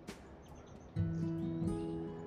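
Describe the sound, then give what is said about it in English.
A serin sings a rapid, high-pitched jingle of thin, buzzy notes from right overhead at sunrise, over a steady low droning hum in the background. “and a little serin.”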